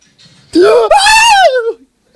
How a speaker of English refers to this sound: Why are you yelling? Did you not see this guy was hiding?